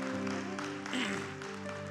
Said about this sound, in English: Hallelujah, hallelujah. Put your hands together one more time. Give the Lord a hand clap of praise.